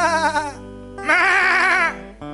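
Lambs bleat twice in loud, quavering, high-pitched cries, a short call followed after a brief pause by a longer wavering one, with no talking.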